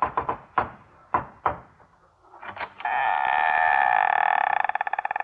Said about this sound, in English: I arrived after lunch and knocked.